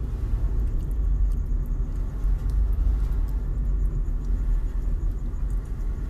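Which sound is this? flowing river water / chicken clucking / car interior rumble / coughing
car interior rumble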